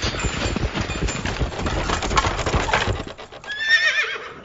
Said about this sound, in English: Why, you're Cookie's horse, ain't you?